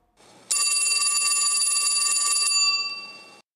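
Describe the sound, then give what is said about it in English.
A phone rings with a bright, sustained electronic trill lasting about two seconds, then fades out. It's fairly loud, with no talking over it. “Grabs his phone.”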